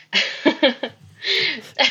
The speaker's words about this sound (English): Sorry, I appreciated you coughing into your elbow. You guys would have seen on video. I was going to say, you guys would have seen I coughed into my elbow.